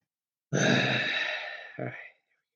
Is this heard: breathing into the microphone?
yes